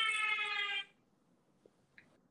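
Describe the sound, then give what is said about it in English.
A loud, steady siren tone with rich harmonics holds one pitch for under a second, then cuts off abruptly, leaving near-silence with a couple of faint clicks. “I'm going after the sirens.”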